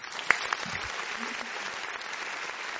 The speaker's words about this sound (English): So we all give that a 10? We give that a 10? Yes. First time ever, a round of applause for this one.